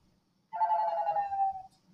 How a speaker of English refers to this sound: I should have answered that call and fucked with them on the podcast.